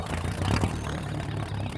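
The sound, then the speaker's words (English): A small outboard boat motor sputters to life and settles into a steady, low, rumbling idle, loud, with a brief clattering surge near the start. “A couple of minutes later, I was on the far edge of the spread with a pintail decoy under each arm when I heard the outboard motor start.”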